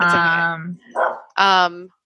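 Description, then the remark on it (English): A dog barks a few loud, sharp, tonal barks, the first one drawn out, with brief pauses between them and no other sounds. “I apologize in advance for my dog's barking.”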